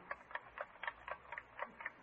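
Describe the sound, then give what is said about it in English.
A wristwatch held up to a listener's ear ticks loudly and steadily, about four sharp clicks per second, with no voices over it. “You can't tell whether it's the watch ticking or somebody knocking on the door.”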